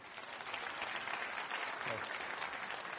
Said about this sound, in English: And I'll raise my hand when that happens. So this will be the signal to applaud, and you can test it out now to see if it works or if it's broken.